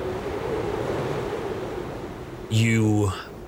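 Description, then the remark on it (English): Steady rushing wind and surging waves fill the scene, a broad unbroken roar, as the wind picks up under thickening cloud cover, until a brief loud tonal cry cuts in near the end and fades. “While that is happening, the wind is picking up more and the cloud cover is getting thicker above you.”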